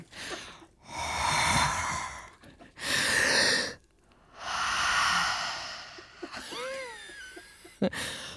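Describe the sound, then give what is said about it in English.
Three long, heavy breaths, loud, rise and fall in a slow rhythm as a recorded breathing take, followed by a few brief high-pitched squeaky vocal sounds and a sharp click. “breathing, take 30.”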